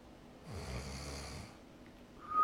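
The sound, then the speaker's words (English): A voice imitates a single drawn-out snore, mimicking sleeping without a CPAP machine, a raspy low rumble lasting about a second, fairly loud, followed by quiet and a brief tonal sound at the end. “No snoring.”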